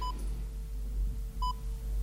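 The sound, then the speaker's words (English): Two short electronic beeps from a heart monitor sounding a person's heartbeat, spaced more than a second apart, ringing clearly over a low steady hum with no talking. “So the sound, the beeping that I hear, that... Is your heart. It is as if your heartbeat was playing a sound.”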